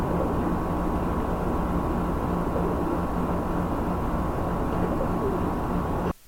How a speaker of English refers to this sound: I don't hear anything but the bird.